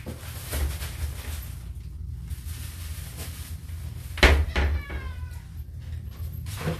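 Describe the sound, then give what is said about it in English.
A male cat refusing its food lets out a single drawn-out meow, fairly loud, over a steady low background hum with a few faint clicks and knocks. “My cat would rather starve to death and fucking eat food he doesn't like.”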